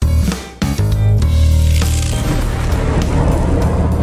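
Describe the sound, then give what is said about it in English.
A loud, crackling lightning-round transition sound effect in a news show, marking the quick hits after the big news: a few sharp splintering cracks up front, then a dense, sizzling rumble that rolls on steadily for several seconds with no talking. “When you hear that sound, it's the lightning round for the quick hits after the big news bits.”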